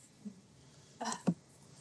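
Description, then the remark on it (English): A single sneeze: a short breathy intake followed by a sharp, explosive burst, over in under a second, with no talking around it. “Bless you.”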